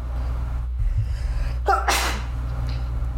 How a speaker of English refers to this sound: Oh, salud. Hopefully my sneezes were not picked up by the microphone.